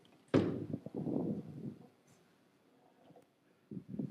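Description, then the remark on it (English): Someone pounds on a door: a loud first bang, then a quick flurry of heavy thuds for about a second, a lull, and another burst of knocking near the end. “And beating on the door.”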